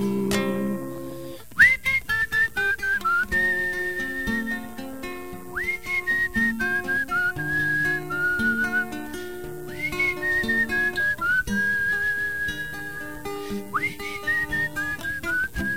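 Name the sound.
melodic whistling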